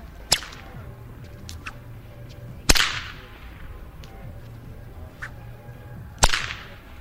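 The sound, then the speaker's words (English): Three loud, sharp cracks from a huge blue whip over a dozen feet long, cracked in a plaza, spaced unevenly a few seconds apart, each followed by a brief slapback echo off a church and a movie theater, over a low background murmur. “I set up my mic and he began cracking the thing.”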